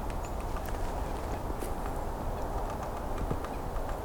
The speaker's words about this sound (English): Woodpecker still pecking away above me.